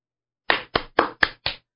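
One person claps alone at a team meeting: five sharp, crisp handclaps in a quick, even rhythm, each a bright slap that fades fast, with silence before and after and no other voices or applause joining in.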